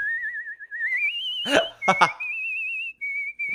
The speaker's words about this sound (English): I haven't had a Disney whistle in a while.